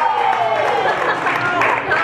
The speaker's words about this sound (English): All right, I want to gauge the room here by clapping and cheering. How many of you think they can actually beat Duke in the Sweet 16?